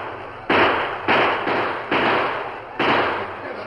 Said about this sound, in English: The attack wasn't long in coming. In spite of the smoldering ground, the Indians moved across the shallow stream and then rode shooting and yelling toward the wagons.